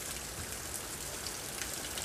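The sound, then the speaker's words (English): Steady rain pours down with a dense, even hiss, scattered droplets pattering on a hard surface. No voices are heard. “The world will bake you and sweat you, and eventually refresh you with the coming rain.”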